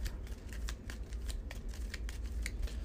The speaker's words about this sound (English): Shuffle that exploration deck, and there's a few choices here, so I should be able to branch out.